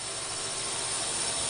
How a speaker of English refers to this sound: It's a drone.